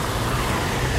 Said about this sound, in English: This bus lets me cross the road, very friendly.